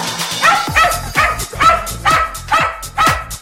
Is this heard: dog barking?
yes